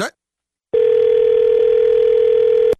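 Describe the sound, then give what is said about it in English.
After the other person hangs up, a brief burst of sound gives way to near-silence, then a loud, steady telephone dial tone hums continuously for about two seconds before cutting off abruptly. “You don't hang no damn phone up on me.”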